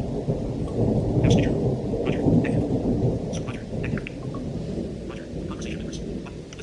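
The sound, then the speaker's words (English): A heavy thunderstorm with deep, sustained rumbling thunder rolling continuously beneath steady rainfall, with scattered sharper drip and splash sounds on top, loud throughout. “This storm is mean.”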